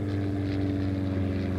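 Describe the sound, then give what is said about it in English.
A propeller plane climbs and banks upwards into the clouds after takeoff from a runway, its deep engine hum droning steadily at a constant pitch and loudness throughout, with no voices. “The plane rattles and bumps down the runway. Soon it's banking upwards into the clouds.”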